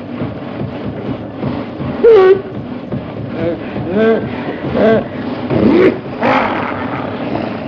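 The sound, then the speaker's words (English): A car engine rumbles steadily as the vehicle churns through water, with sloshing noise throughout, while voices call out and exclaim over it. “let's find a place to cross and get the car out of this water”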